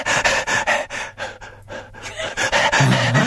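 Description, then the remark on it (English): A person imitates a dog's panting: quick, breathy, rhythmic huffs that briefly slow into softer half pants midway before picking up again, with no speech. “But in fact, dogs have a little rest in the middle of a pant in which they do a half pant.”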